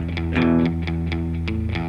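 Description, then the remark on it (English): A distorted electric guitar through a Tosin signature distortion preset in the BIAS amp program plays a thick, buzzing chord with rhythmic picked attacks, sustaining steadily and fairly loud for the whole stretch, with no voices. “Can I not save any of his distortion?”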